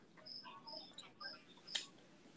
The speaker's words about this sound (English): All I hear is crickets. Who told a bad joke? Why do I hear crickets? Who told a bad joke?